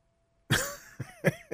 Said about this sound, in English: I'm about to pass out. Coughing so much up in here. Allergies, pollen, and the whatever else.